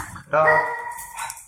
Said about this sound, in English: Sorry, my dog's barking. She's a little brat. She wanted to be a part of the show, you know? Now she's famous.